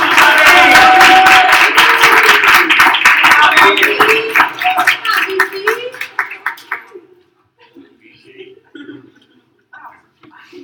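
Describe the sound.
A crowd claps loudly and steadily for about seven seconds, with a few cheers and voices mixed in, then the applause tapers off and a lone voice speaks quietly.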